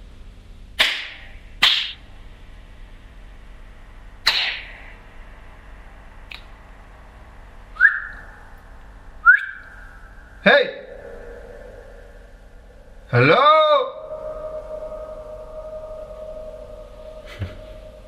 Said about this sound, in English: So that's just the piano, the sound of the piano doing that sort of reverb from all the strings being free to resonate.